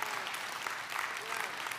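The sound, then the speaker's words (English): A crowd at a sermon claps steadily, dense overlapping handclaps forming a continuous wash of applause at an even level for the whole stretch, with no voices rising above it. “Yeah, if you are thankful for that, you can clap for that.”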